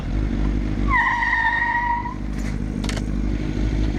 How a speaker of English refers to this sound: The kids are in the back of the truck. They reversed it and went so fast in reverse that when they stopped their car, their truck, their F-150 extended cab.